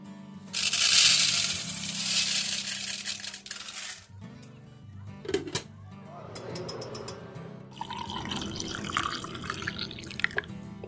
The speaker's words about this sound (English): she pours steaming water over coffee grounds. Her neighbors gather around to watch in awe.